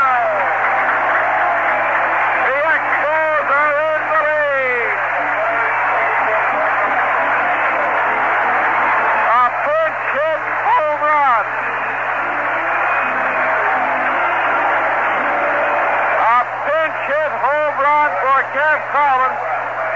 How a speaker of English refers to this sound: The first time the Expos have had a pinch hit home run. Wow, the crowd really roaring. What a bat by ….